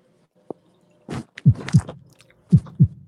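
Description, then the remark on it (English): A deep, booming heartbeat sound effect played during a live contest thumps in two lub-dub pairs, loud, with a short burst of rustling noise around the first pair and no talking. “This motherfucking heartbeat throwing me off, bro.”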